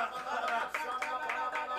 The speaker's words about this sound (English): Wherever you are, if you can clap your hands in prayer, clap your hands in prayer right now.